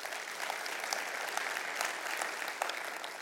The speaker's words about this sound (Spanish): Un aplauso a Dios, si se lo merece.